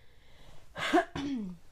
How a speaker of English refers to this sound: I just coughed. I know. You're doing every bodily noise. Why? I can't control my coughs.